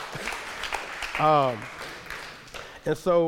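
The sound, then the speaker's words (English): A crowd applauds steadily, a dense crackle of clapping throughout, with a couple of loud voices whooping and cheering over it. “You can clap it up for her.”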